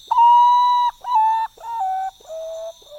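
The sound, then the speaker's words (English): A Common Potoo sings its mournful song: five clear whistled notes stepping steadily downward in pitch, the first long and strongest, the rest shorter and softer, over a faint high insect drone. “Their birds more often heard than seen, with a melodious but mournful song made at dawn, dusk, and by the light of the moon.”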